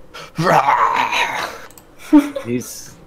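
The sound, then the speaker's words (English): A voice imitates a loud dragon roar: a long, harsh, strained bellow for about a second and a half, followed by a couple of shorter guttural growls and a breathy hiss. “He's going to scream out like his... pretty loud as dragon roar.”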